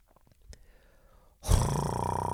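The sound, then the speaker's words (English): A voice imitating a helicopter: after a quiet, faintly tonal opening, a loud, rough, buzzing roar bursts in abruptly and holds steady for about a second until the end. “See, I was kind of going for like a helicopter sound, but no, that's more like a, No.”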